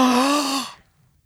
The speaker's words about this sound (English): I'm going to gasp. Preemptively gasp.